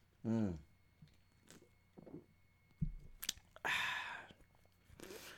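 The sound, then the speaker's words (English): Mouth sounds of someone sipping a very tart, sour beer, Playdate by Deep Ellum Brewing: a brief vocal grunt, wet lip smacks and clicks, then a breathy, noisy slurp and exhale, with no speech. “This is called, I'm sipping on a beer called Playdate by Deep Ellum Brewing.”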